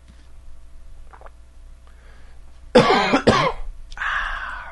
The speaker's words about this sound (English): Nothing like some cold water to make you cough. I don't know why that would be.